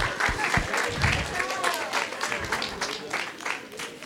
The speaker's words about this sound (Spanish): Démele un aplauso a los artistas. Thank you, guys.